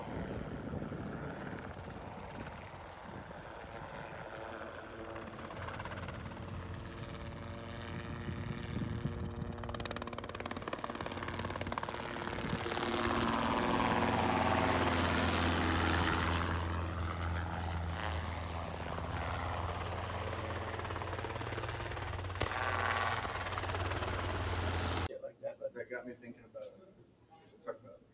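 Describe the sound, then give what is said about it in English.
A helicopter roars overhead during a deer net capture, its steady rotor thump and engine whine swelling louder midway, with muffled voices beneath, before the noise cuts off abruptly near the end. “it was a perfect layup, and I came out way out of the helicopter, netted the deer, she rolled up, and then we'll clip it.”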